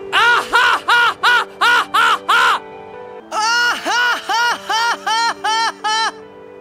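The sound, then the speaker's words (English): A voice mimics a crow, letting out a rapid string of harsh, nasal caws: about seven loud calls, a brief pause, then another run of eight, clear. “It sounds like someone trying to do a bird call, you know? Caw, caw, caw.”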